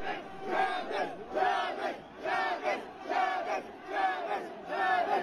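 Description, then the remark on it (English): A crowd of people screaming and shouting for a medic in loud, overlapping surges that rise and fall roughly every second, strained high-pitched voices layered together with no break. “I'll play it and you can hear it in a second, but, like, then you can hear it stop, and they're like, they're saying, medic, we need a medic. And there's people screaming,”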